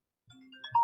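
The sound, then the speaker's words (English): A phone's electronic ringtone for an incoming video call starts up, bright synthetic chime tones layered together and swelling louder over under a second, with no voices. “Oh my God, someone's phoning me. Instagram video.”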